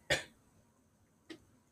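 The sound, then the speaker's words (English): A sharp, loud cough bursts out, followed about a second later by a second, quieter cough, with near silence around them. “You trying to give me the Rona? What are you, well, cough away from the...”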